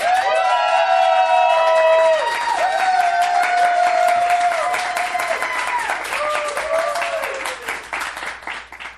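A crowd at a debate breaks into sustained applause to vote for one debater as the winner, dense rapid clapping mixed with shrill cheers and whoops, loud throughout and tapering slightly toward the end.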